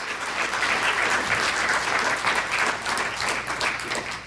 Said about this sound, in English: Did you get anything out of this day? Put your hands together. Give the Lord a hand clap. Hallelujah.